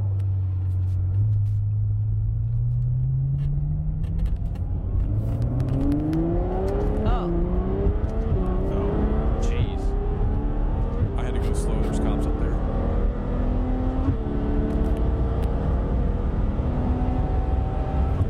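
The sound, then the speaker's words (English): A powerful Ferrari 812 sports car engine roars as it accelerates hard, its pitch climbing steadily through the gears with a brief dip at a shift, loud and continuous for the whole stretch. “No, this is the 812. This is Jay's car.”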